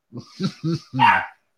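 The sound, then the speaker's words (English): A dog barks four times in quick succession, the last bark longer and harsher than the rest, moderately loud with no talking over it. “Even the dog's wondering if you're dying.”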